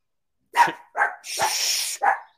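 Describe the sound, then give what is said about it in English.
A dog barks four times in quick succession, loud, with the third bark drawn out into a harsh, raspy howl before a final short bark. “Dogs hear a, they hear a horn honk and they go crazy.”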